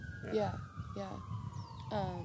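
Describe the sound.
Emergency vehicle sirens wail steadily, the pitch gradually dropping as they pass, while people talk in short bursts over them.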